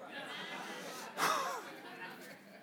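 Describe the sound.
A single sudden sneeze bursts out sharply around the middle, louder than the steady murmur of voices and room noise that continues before and after it.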